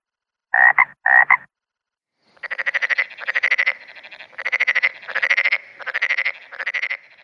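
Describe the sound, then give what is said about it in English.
Frogs croaking in rapid, rattling pulses, two short bursts at first, then a steady run of longer trilling calls repeated in a rhythmic chorus, fairly loud with no talking. “I just think frogs are really cool little animals, and I'm very excited that I have got frogs in my back garden as well.”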